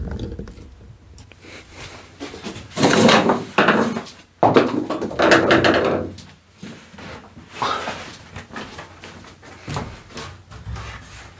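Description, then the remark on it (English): Heavy wooden scraping and clunking as the first wooden desk top plate is shifted and lifted off a desk, with loud bursts in the middle and softer knocks and rustles on either side. “So now the first plate is off, and also these IKEA drawers are actually pretty heavy.”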